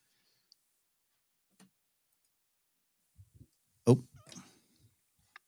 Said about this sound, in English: Oops, sorry, guys. My dog barking in the background, so I had to quiet myself.